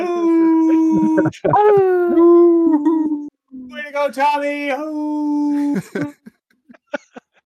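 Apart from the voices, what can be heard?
dog howling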